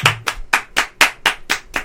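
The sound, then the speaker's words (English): Steady, rhythmic hand clapping, about eight sharp claps at an even pace, fairly loud, with no voices over it, applauding at the end of a commercial. “Normally commercials don't have clapping at the end.”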